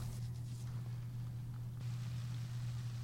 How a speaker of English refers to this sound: Wow. That is not static you're hearing, no, folks. No, that's not rain. That's some freshly poured cola.